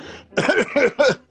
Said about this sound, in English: Was that a cough or a laugh? Anyway, there's a laughing cough.